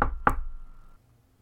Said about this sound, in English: So if I were to knock on one of these pipes, just like a nice, you know.